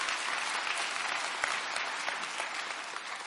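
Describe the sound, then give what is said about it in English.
A church audience at St. Matthew's applauds the speakers steadily, a dense wash of many hands clapping, with a few sharper individual claps standing out, sustained evenly throughout. “Let's give these speakers a hand clap.”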